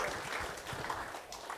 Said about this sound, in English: So, well, friends, thank you so much for coming up. Can we give them a warm round of applause for sharing with us today?